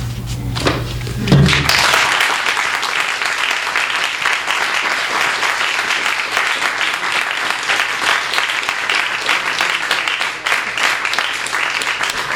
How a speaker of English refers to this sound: Please just keep applauding for Gideon Lewis-Kraus.